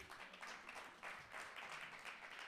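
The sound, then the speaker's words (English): Scattered applause from a small group of people in the audience during a sermon. A few people clap unevenly with irregular, overlapping claps that stay at a moderate, steady level for a couple of seconds. “If five people are going to clap, everybody's got to clap.”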